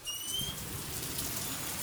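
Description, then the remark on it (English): Heavy rain, falling at a rate of 4.13 inches an hour and heard from a porch, pours down in a dense, steady hiss that never lets up, with a few faint thin whistling tones drifting above it and no voices. “So that's, It's really coming down out there. Cats and dogs, I say.”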